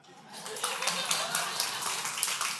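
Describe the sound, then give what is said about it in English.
A crowd claps steadily for a few seconds, a dense, bright patter of many hands that swells in after a soft start, with a murmur of voices mixed underneath. “Oh, he gets the clap.”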